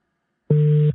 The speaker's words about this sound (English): Interesting dial tone.